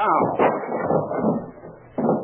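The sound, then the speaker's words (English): Two police officers break down a locked hotel room door: heavy, splintering crashes with a loud blow near the start and another at the end, separated by a rumbling, clattering stretch. “Finding the room locked, the two officers break down the door.”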